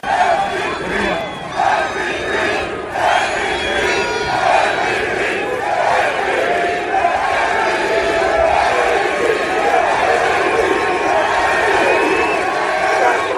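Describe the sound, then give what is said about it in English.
A huge crowd of Eagles fans chants in unison in the opposing team's NFL stadium, 100 miles away, in a rainstorm, as Hurts walks out after the victory, a dense roar of voices rising and falling in a steady rhythmic cadence, loud and sustained throughout. “And you could tell by this chant. Listen.”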